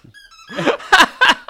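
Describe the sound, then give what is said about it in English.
A person mimics a squeaky dog: a thin, high whine followed by three sharp, yelping squeals in quick succession, fairly loud, with no other sounds around them. “It was me. I'm doing a little trick. There's no dog.”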